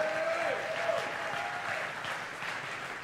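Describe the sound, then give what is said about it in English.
A church audience claps for the Lord steadily for three seconds, a dense, continuous wash of applause, with a few raised voices shouting above it near the start. “Come on, somebody give the Lord a clap and a shout.”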